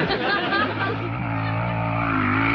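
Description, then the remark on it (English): A motorcycle engine idles with a steady, loud low rumble and droning harmonics, settling into an even hum after a brief burst of murmuring voices at the start. “Oh boy, and he drives a motorcycle.”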